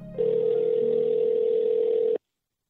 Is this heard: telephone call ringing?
yes